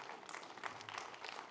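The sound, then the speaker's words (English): A church audience breaks into applause for God during a sermon: a dense, steady wash of many hands clapping at once with no clear rhythm, sustained at an even level for a second or two. “Give God a clap of him, would you?”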